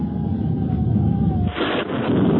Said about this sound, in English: Thunder. Is there danger from these storms? Will the lightning strike this pass?